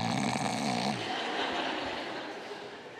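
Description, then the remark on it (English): A person does a loud imitation of snoring: one long rasping snore that fades into a breathy, noisy exhale, with no talking. “my wife goes, you're snoring again.”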